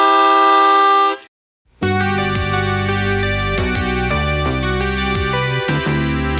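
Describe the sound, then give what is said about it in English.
A loud, steady train horn blares for about a second, then cuts off abruptly. After a short silence, busy, dense music starts and carries on to the end. “Hear that brake train coming.”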